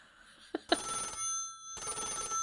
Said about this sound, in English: Suddenly, Ruth's phone rings, and she picks up her landline.